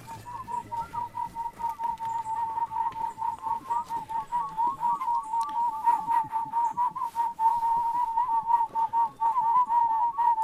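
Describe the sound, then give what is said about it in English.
Several people on a guided tour whistle together at a tree full of barbet birds, trying to interact with them, in a steady, warbling tone that wavers up and down like birdsong, continuing without a break for about ten seconds, moderately loud, with no talking. “That's all of us whistling.”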